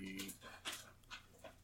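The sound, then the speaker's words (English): A puppy named Sushi pants in quick, breathy huffs, several short bursts in an uneven rhythm, soft, with no clear talking over it. “And oh, Sushi, you are such a smelly puppy.”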